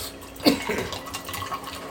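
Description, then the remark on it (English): A drink of Screwball is poured into a glass: a brief splashing onset followed by a steady, gurgling trickle of liquid for about a second and a half, with no talking. “Once again, I am gonna pour this with love.”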